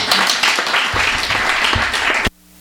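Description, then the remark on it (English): An audience at a poetry reading claps in dense, steady applause for the poetry for a couple of seconds before it cuts off abruptly into near silence. “And again, a nice round of applause for that beautiful poetry.”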